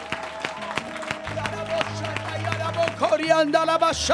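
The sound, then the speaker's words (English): An audience claps in steady unison on the beat at a church service, sharp regular hand claps over sustained organ-like music with a low bass line and a rising melody toward the end, as worshippers begin to praise God. “While you're clapping your hands, let's lift our voices and begin to praise him.”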